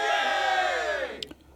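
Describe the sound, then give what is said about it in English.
A group of workmen cheer together in a loud, sustained roar of overlapping voices that sags in pitch and fades after about a second, followed by a couple of brief taps. “The other men raised their heads and cheered.”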